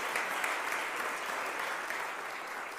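A crowd applauds the props team steadily, a dense wash of many hands clapping at once, sustained and fairly loud for a few seconds with no voices standing out.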